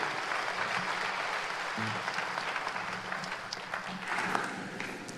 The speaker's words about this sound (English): Can you just give a warm welcome, a big hand clap of this guy here?